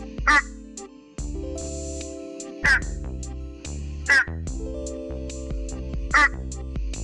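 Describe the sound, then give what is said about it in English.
Four short, resonant honking calls of a Malayan horned frog ring out at irregular intervals, each loud and abrupt, over a steady layer of sustained musical tones. “The call of the Malayan horned frog is a short but resonant honk.”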